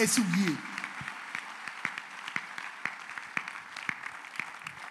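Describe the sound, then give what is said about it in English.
An audience applauds to give the Lord a clap: many hands clapping at once in a dense, steady patter of sharp overlapping claps that holds at moderate loudness, with a voice heard briefly at the very start. “Now, when give the Lord a wonderful clap.”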